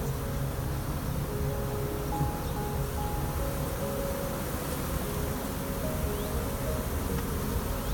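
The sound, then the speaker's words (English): A dense, steady buzzing of a honeybee swarm massing outside, many bees flying in circles, fills the whole recording, many wings droning together with a few higher tones weaving in and out, and no one talking. “This is what a swarm looks like.”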